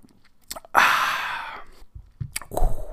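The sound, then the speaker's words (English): A breathy slurp as someone sips a drink, lasting under a second, framed by small mouth clicks and a soft swallow-like sound afterward. No talking. “All right, let me take a sip and then we'll get into the meat of the show.”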